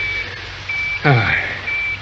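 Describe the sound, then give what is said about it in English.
A high, thin electronic beep repeats at a steady pace from a small, not very sensitive pocket tracking receiver, each tone lasting about a quarter second. A man's voice briefly speaks between beeps over a low background hum. “Is that the receiver? A pocket one, lad. Not very sensitive.”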